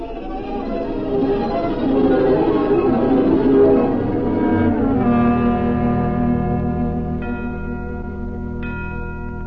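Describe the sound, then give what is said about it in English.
Sleigh bells ring out in a shimmering, sustained wash of tones, swelling in the middle and then settling, with a couple of fresh bright strikes near the end and no voices. “I thought I heard sleigh bells.”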